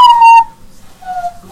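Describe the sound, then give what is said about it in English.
Hollow, low-pitched whistling blown through cupped hands: a loud, steady first note, then a softer, slightly lower one, and a third starting as it ends. No talking. “Stop making the whistling noise. Your hands are not a woodwind instrument.”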